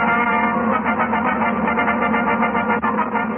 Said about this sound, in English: And now that I think about it, while that fanfare is pretty standard now